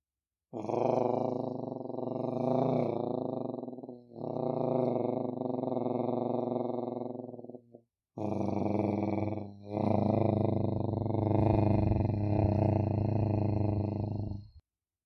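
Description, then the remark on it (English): Underwater surging and gurgling of bubbles, heard with ears under the water in jacuzzi-like water: three long, loud swells of deep, resonant rumbling, each several seconds, separated by brief pauses, with a growl-like tone and no voices. “Your ears are under the water, and you can hear the rhythmic surging and gurgling of the bubbles.”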